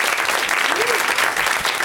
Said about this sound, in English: hold your applause till the end